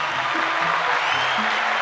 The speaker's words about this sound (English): Let's give our chronicler a round of applause.